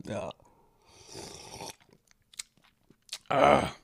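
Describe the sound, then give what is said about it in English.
Wet mouth noises of someone sipping a strong Williams Wolf pecan drink from a glass: a short slurp, quiet swallowing and breathy sounds in between, then a louder, harsher exhale at the end. “One sip of Amari and losing my thoughts.”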